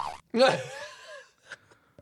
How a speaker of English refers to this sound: There you go. But that's a crappy boing. It's a little white noise in the back.